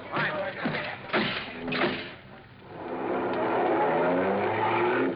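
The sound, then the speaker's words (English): A car engine revs up and accelerates during a car chase, building into a loud, steady roar after a few brief bumps and clatters at the start. “They're off and tailing us. Come on, step on it, Lacey.”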